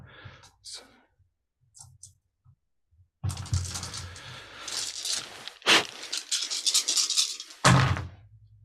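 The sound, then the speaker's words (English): A few soft clicks, then nine dice shaken and rolled for a grenade's damage in a game, clattering and tumbling across a hard surface in a busy, fairly loud rattle with sharp individual knocks. “So go ahead and roll the damage, the 9 dice for the grenade.”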